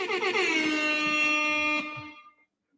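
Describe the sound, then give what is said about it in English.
A loud, brassy air horn blares in one sustained blast for about two seconds, then cuts off and fades quickly, with no voices over it. “We got to give you the air horns for that, bro.”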